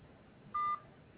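A single short electronic phone beep, like a keypad tone, sounds once as a phone call is hung up, clear and fairly loud, over a quiet background hiss with no talking.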